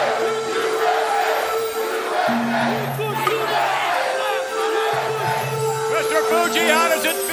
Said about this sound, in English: Capacity crowd chant USA.